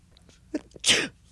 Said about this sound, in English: There might be another way. Why don't I give it a try? Sometimes I can get myself to sneeze if I pinch my nose.